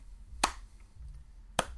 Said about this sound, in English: Slow clap for Yacht Club Games.